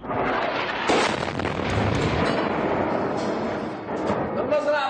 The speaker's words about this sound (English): A day of deadly bombing by Saudi-led warplanes. Witnesses said many civilians were caught up in the blast.